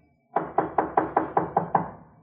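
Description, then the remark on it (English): A quick series of eight firm knocks on a door, evenly spaced, each with a short resonant thud, with no voices. “Let him knock again.”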